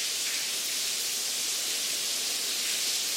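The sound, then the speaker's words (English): Torrential rain pours down on a stairwell in a dense, unbroken hiss, a steady bright wash of water with no pauses or distinct drops, loud throughout. “It is water. It is actually torrential rain on a stairwell.”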